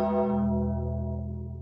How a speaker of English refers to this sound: Doom and gloom. We're in the doom and gloom time right now. Let's ring the bell.